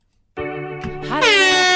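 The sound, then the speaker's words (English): A quiz buzzer sounds during a music quiz round: a loud, brassy horn-like tone that starts abruptly and holds steady, then bends upward in pitch and grows brighter for its last half-second. No one speaks. “Your hands on buzzers.”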